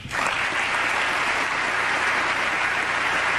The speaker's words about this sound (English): And everybody clapped.